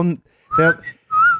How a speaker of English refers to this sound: There's no need to whistle there.